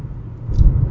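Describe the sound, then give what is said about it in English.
Low, steady engine rumble from inside a moving car, swelling slightly louder toward the end, with no voices or other distinct sounds on top. “And I'm in my car, so I can't read a screen right now.”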